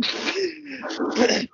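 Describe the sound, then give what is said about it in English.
A voice acts out the build-up to a sneeze, a few breathy, rising 'ah' gasps that stall and trail off without ever reaching the actual sneeze. “like you're about to sneeze and it never happens.”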